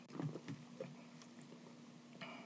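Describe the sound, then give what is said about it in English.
Quiet mouth sounds of people sipping a smooth, chocolatey porter beer, with a few soft slurps and gulps scattered over a low steady hum, no talking. “Give it a sip.”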